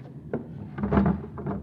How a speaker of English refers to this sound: What are you doing in that drawer? I haven't any money.